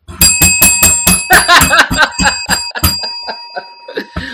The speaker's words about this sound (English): You can't ring a bell at me.